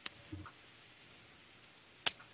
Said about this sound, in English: I can hear a chinking noise, like somebody's like clicking coins together. Oh, that's me. Sorry.